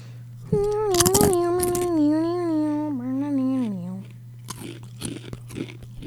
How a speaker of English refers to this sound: Hear that? Hear what? My chewing.